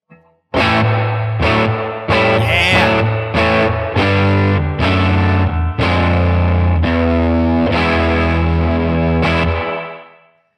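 Overdriven electric guitar chords ring out loud and gritty through a tweed-style amp, strummed in a steady rhythm with a splashy spring reverb tail from a reverb pedal, then fading out at the end. No one speaks.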